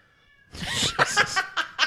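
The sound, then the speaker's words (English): A cat meows insistently, a long wavering yowl followed by several shorter, choppy meows in quick succession, loud and clear with no talking. “And you know, I would really like to thank the dog and the cat for, once again, making a lot of noise once we sit down right to now.”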